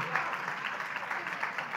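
A crowd at a church claps for a man who guessed the answer to a clue, a steady, dense round of applause that holds at an even, moderate level for about two seconds, with no voices standing out.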